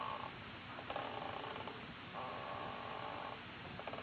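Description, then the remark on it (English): A wooden rocking chair, Mrs. Davis's rocker, creaks in a slow, steady rhythm, each drawn-out groan rising and falling with the rock, fairly soft over a faint hiss, with no voices. “I've got to exercise more. My bones are rusting. Oh, it's the rocker.”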